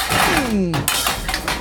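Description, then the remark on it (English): A mountain of pots and pans crashes down: a sliding, falling scrape gives way to loud, jangling metallic clatter in several irregular bursts, with clinks continuing as pieces settle. “Like this mountain of pots and pans.”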